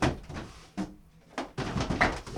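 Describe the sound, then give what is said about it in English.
A drawer slides out of a wall with a rumbling scrape in a few uneven bursts, pausing briefly before a louder, longer sliding rush at the end. “He's got drawers in his wall, bro.”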